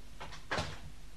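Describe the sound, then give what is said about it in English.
A door is pushed shut: a faint rattle of the handle, then one solid, muffled thud as it closes. No one speaks. “Close the door.”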